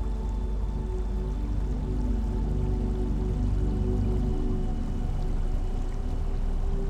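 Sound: running water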